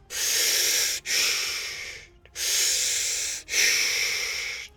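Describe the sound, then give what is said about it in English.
A voice imitates Darth Vader's heavy mechanical breathing over a ship's comms feed: two slow, loud, hissing in-and-out cycles, each breath about a second long and rasping, with no talking. “Specialist … came over the feed in a heavy mechanical breathing.”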